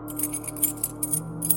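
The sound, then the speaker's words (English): A set of four rusted keys, each covered in a film of tarnish, jangles in a quick, irregular run of light, bright metallic clinks, moderately loud, over a low steady hum. “It was a set of keys, 4 in total, each covered in a film of tarnish.”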